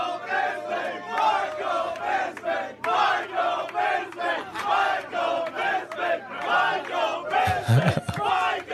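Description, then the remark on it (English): A large crowd in a played video roars and cheers continuously, a loud sustained wall of shouting voices with rhythmic surges, and a brief low thump near the end. “Dude, wait till they show the crowd. Look at them all.”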